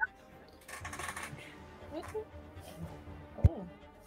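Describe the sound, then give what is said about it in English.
A handful of dice rattles and clatters in a cupped hand for a second or two, moderately loud, followed later by a single sharp knock, with faint murmuring voices. “That sounded like 50 dice in your hand.”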